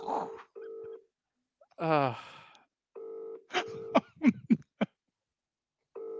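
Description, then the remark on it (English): Steady telephone keypad dialing tones as someone tries once more to phone a man's wife, a handful of clear, fairly loud beeps in short bursts with pauses, broken up by a brief vocal sound and some quick sharp noises in between. “Don't ring her again because she's trying to have a relaxing bath.”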